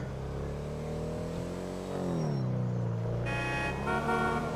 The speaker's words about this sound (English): Don't honk at me, cars.